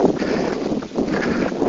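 A steady, rushing breeze buffets the microphone outdoors at night while climbing on a warm September 18th, producing a continuous low roar with gentle swells and dips in loudness and no voices.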